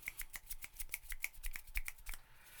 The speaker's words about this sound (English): Can I get some finger snaps on that, bro?